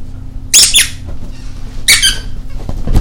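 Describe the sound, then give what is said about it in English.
A squeaky dog toy is squeezed for a dog named Toodle in two quick bursts, each a cluster of high, piercing squeaks about a second apart, fairly loud over a low background hum. “He's looking for a squeaker.”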